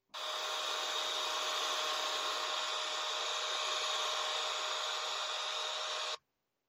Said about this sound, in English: Knowing that it's uncomfortable for her to lift her arms like that, he even washes her hair for her, helps to towel her dry afterwards, uses the hair dryer for her.